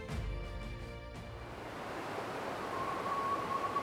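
A steady, loud rush of the turbulent Delaware River in foul, stormy weather as George Washington's army crosses it, with a stormy, wind-like roar, continuous throughout, and a brief tonal hum fading out in the first second.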